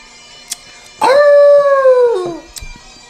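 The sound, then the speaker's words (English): A single sustained dog howl, loud, holding a steady tone for over a second before sliding downward and fading, with a couple of faint clicks before and after. “Howl again.”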